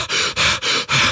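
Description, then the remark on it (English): A voice imitates the exhausted panting of tired band members after playing songs: four quick, loud, breathy huffs in a steady rhythm, with no talking. “Personally, I don't know whether they play as many songs as they played with us, like four, and then they kind of run out of steam and they're like tired. Yeah, I mean. And they're panting and they're like.”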